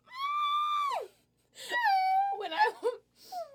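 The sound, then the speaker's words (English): A voice imitates R2-D2 screaming: a long, high, held wail that drops off sharply, then a warbling, wobbling burst of squeals, ending with a short falling whine. “I can do R2-D2 screaming.”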